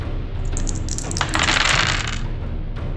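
A handful of six eight-sided dice clatter and tumble across a hard tabletop for about two seconds, rolled for a troll's hit points in a tabletop role-playing game; a busy rattle that settles into quiet, with no one speaking.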